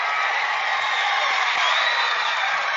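A basketball crowd of Kenesaw fans roars and cheers after a Kenesaw player's dunk in a game against Heartland, a loud, steady wall of voices holding for a few seconds with faint whoops mixed in.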